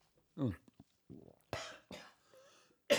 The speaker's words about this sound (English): You've got a cough? Is that it?